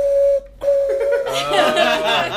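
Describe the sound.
A voice mimics a Ukrainian train whistle with a sustained high tone, briefly broken and then resumed, before laughter and overlapping chatter from several people take over.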